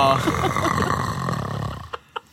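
A person mimics snoring: one long, rattling, nasal snore that fills nearly two seconds, then quiet with three short breathy puffs.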